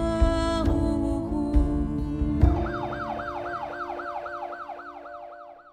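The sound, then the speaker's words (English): An ambulance siren wails in rapid, repeating rising-and-falling sweeps over a low engine rumble, growing steadily fainter as the vehicle pulls away. “And just like that, his wife and youngest son looking on helplessly, the ambulance sped off.”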